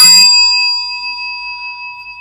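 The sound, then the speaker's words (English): A school bell rung by a teacher to call pupils back to the classroom sounds with one bright, clanging strike, then its clear metallic tone rings on and slowly fades over a couple of seconds. It is loud, with no voices. “Just then, and thankfully, Mrs. Spear rang the bell.”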